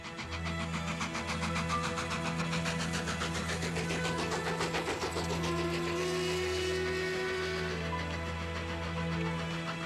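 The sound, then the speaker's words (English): A fast, steady mechanical chugging sound effect like a train runs towards the end of a piece of music, layered over sustained low droning tones. The rhythmic clatter stays loud and even throughout, with no voices. “And then you can hear this like train kind of sound effect towards the end.”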